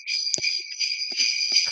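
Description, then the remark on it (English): Sleigh bells jingle in a steady, unbroken high-pitched shimmer, with a few soft low thumps underneath and no talking, heard over a phone line from a caller during a Christmas call-in. “I was busy turning on the sleigh bells and didn't turn off the feed.”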